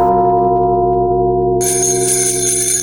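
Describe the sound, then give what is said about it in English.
Bells alone, from a product called Jingle Bells Just the Bells, ring out a Christmas carol melody in steady, sustained tones, then a bright shimmering jingle joins partway through, loud with no voices. “That's the magic of Jingle Bells Just the Bells.”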